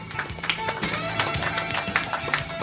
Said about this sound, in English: All right, we can applaud.